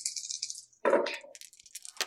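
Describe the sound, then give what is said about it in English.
Four dice rattle and clatter across a hard surface in a quick burst, a sharp jumble of small clicks and taps that settles, then one last tap near the end. “So I get one growl, and I get three. I'm rolling four.”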